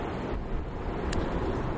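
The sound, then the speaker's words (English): A steady, rumbling roar of wind buffeting the microphone outdoors in cold, windy weather while the speaker turns their back to the wind to block it. The sound is heavy in the low end and continuous throughout, with no voices and only a brief faint crackle partway through. “Oh, it's a little windy now. I'm just blocking you with my turning my back to the wind.”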